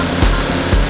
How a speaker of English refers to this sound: Cut, cut, cut, cut your grass with your lawnmower.